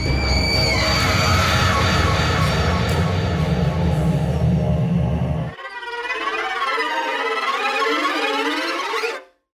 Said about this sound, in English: Give a sinister scream for your host